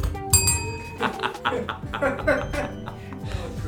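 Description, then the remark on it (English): A small bell rings once with a bright, high, ringing tone that lingers briefly, followed by people laughing and chatting. “Okay, the bell goes off if anybody uses any words or concepts that I personally don't understand.”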